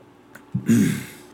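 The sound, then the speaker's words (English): A person takes a quick swallow of water, then lets out a short, breathy exhale. The sounds are brief and fairly quiet, with no talking. “Let me drink some water here.”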